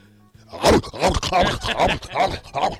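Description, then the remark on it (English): A rough, gravelly voice imitates a dog barking, six loud bark-like bursts in a steady rhythm, each strained and hoarse. “That dog sounds sick.”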